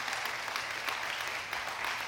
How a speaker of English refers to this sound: Give the Lord a big old hand clap of love, praise.